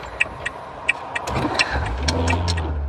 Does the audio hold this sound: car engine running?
yes